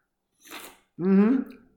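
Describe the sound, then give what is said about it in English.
A short, wet slurp of someone sucking up overflowing beer, lasting under half a second, followed by a brief voiced utterance. “Yeah, that disgusting slurping sound, that was me.”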